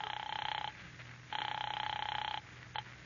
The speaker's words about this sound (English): Operator, how about my number? I'm ringing it now.